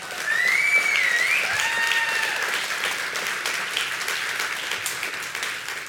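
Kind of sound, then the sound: crowd, audience clapping hands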